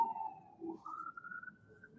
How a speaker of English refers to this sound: Oh, hold on a second. We've got sirens coming down the street.